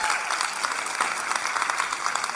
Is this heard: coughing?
no